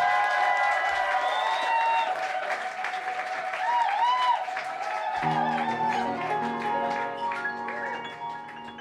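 A crowd applauds a comedian and poet steadily and loudly for several seconds, dense clapping mixed with scattered cheers and whistles, and a low humming tone joins in over the last few seconds.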